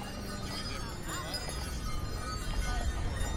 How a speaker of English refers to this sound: Here come the jingle bells again on the horse. That's cool. Yeah, it's real nice. Even lights on the carriage.